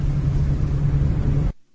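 A steady, fairly loud car engine rumble with a constant low hum and broad road noise, running without any voices before cutting off abruptly near the end.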